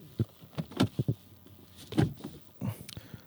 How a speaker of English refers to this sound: Oh, I got to open the door. Sorry.